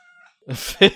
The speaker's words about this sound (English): such a loud cat.